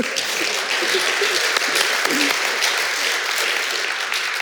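An audience claps steadily, a dense crackling wash of many hands that holds an even, fairly loud level for about four seconds without fading.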